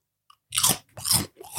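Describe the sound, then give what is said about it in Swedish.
Three loud, crackly crunches of snacks being bitten and chewed right up against the microphone, each a short burst of bright, gritty noise, with a faint click just before the first. “Så vi har köpt lite munchies här. Så det blir nog ett och annat knaprande i mickarna kan man då dra.”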